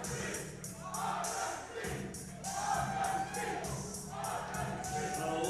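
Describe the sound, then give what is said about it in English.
A large wrestling crowd roars and cheers continuously, a dense wash of many voices with rhythmic rising swells and faint thuds, loud and sustained throughout. “You hear the crowd?”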